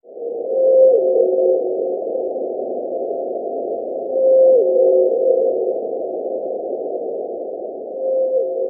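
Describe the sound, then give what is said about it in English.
A blue whale call: a low, steady tonal moan that steps down in pitch, repeated three times at slow, even intervals over a constant hissing underwater rumble, with no voices. “That is a blue whale.”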